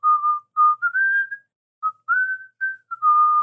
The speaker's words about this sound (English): She's quietly whistling to herself as we get to the mouth of the tunnel. And it like echoes in the tunnel, which she thinks is super neat.